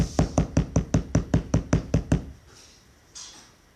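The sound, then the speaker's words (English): A rapid series of about twelve sharp, solid knocks on a wooden front door, evenly paced, followed by a brief quiet stretch with a faint soft rustle near the end. “And in the Rebbe's room in the meantime, his wife, children, grandchildren were there to receive the bracha when suddenly they heard knocking on the front door.”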